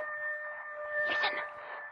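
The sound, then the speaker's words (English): A long, steady wolf howl holds a level, ringing pitch for about two seconds, swelling slightly in the middle, with faint rumbling noise beneath and no one speaking. “Wolf. He's hungry, too.”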